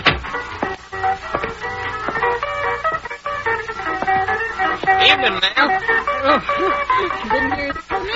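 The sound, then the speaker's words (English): Loud music blares from a radio, a dense, continuous stream of bright melodic tones and rhythmic accents filling the whole stretch at a steady, high volume. “Radio's too loud.”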